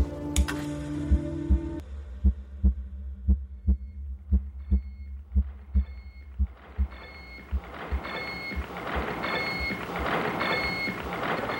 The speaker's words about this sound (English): You are listening to the heartbeat of the Sage computer. Every instrument in this room is constantly monitoring, testing, pulse taking, controlling.